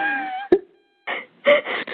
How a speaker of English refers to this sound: No, you're yawning now. Stop. Everyone yawn.